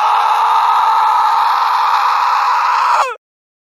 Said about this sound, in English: As if answering him, the woman's mouth contorted, and she let out a horrific scream.